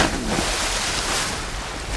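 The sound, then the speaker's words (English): A person diving into a pool, heard as a steady, loud rushing wash of bubbling water that fills the whole two seconds with no voices over it. “So I crawl out the debris, and I run for the water part. Take a dive.”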